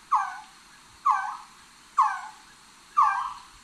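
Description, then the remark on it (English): Four evenly spaced, mournful calls from a resplendent quetzal, each a sharp onset sliding down in pitch with a whimpering, puppy-like quality, repeating about once per second with no talking. “Yeah, I'm seeing on the page it sounds like a whimpering pup.”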